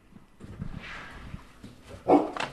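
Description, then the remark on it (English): A dog gives one sharp, loud bark near the end, after a stretch of softer rustling and huffing noises. No one speaks. “There's a new dog.”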